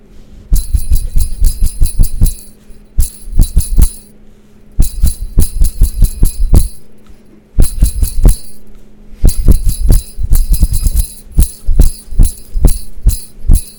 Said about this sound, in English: I'll play you a little song on my jingle bells here.